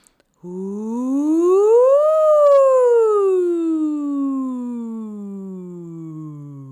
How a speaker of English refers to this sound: How about an ooh sound?